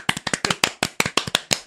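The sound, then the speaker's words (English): A short round of applause for Phil Joynson: roughly a dozen sharp, crisp hand claps in a quick, slightly uneven rhythm, moderately loud, with no voices underneath. “Come on, let's have a round of applause for Phil Joynson.”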